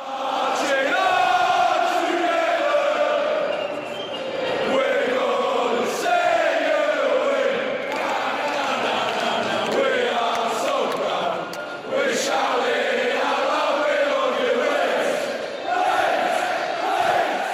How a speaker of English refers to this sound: I think I've noticed this year, especially with fans being back in the stadiums, where a lot of fans of not Leeds have sort of said never heard the Leeds crowd so loud. And even at away games, we are absolutely outstanding.